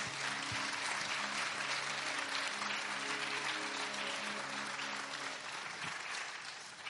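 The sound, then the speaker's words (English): An audience gives another round of applause to thank the weekend's guests, steadily, a dense wash of loud clapping that holds for several seconds with a faint murmur of voices underneath before it begins to taper. “Let's just give these guys another round of applause.”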